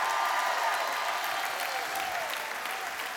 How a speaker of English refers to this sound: Come on, somebody ought to give God a good hand clap praise.